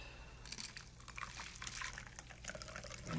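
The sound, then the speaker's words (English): A bee's knees cocktail of honey, lemon and gin is strained steadily into a chilled glass for a few seconds, a soft continuous splashing trickle with bright, fizzy high tones and a low hum beneath, no voices. “And then I'm going to strain it into the glass.”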